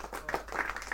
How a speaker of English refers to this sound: Yes, thank you so much. You deserve applause. There's no sound on my applause now.